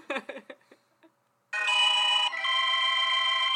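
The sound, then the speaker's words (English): A mobile phone ringtone blares loudly, a sustained bright electronic melody that shifts pitch partway through, following a few brief voice-like sounds and a moment of quiet. “Oh, I muted my phone.”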